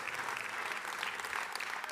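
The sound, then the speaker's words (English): An audience claps steadily, a dense wash of many hands with no pauses, loud and sustained for the whole moment with no voices standing out. “I really appreciate that clap.”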